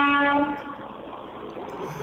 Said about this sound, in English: What was that? I don't know. Car horn.